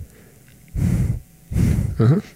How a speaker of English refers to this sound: Can you hear the breathing thing?